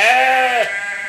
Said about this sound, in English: And now it's nosedived again because they are surrounded by God knows how many goats, all bleating like that sound effect.